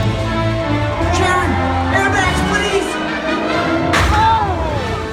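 A stunt performer playing Spider-Man at Disney's California Adventure fails to connect his swing line and slams into a building with one sharp, loud crash near the end, rising out of a dense, steady wash of crowd-like noise and murmuring voices.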